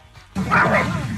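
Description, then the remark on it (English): A dog lets out one loud, drawn-out bark, breaking a brief quiet and lasting nearly a second, with no talking around it. “Ah, dogs.”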